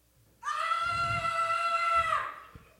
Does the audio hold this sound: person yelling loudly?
yes